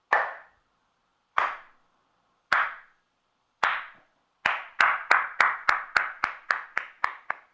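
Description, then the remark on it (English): A slow clap, the kind captured in the movie Lucas, filmed in Glen Ellen, Illinois: single sharp handclaps spaced about a second apart, then quickening into a rapid, steady run of claps. No voices, just the crisp claps ringing out one after another. “The movie Lucas was filmed in Glen Ellen, which captured on film the world's first slow clap.”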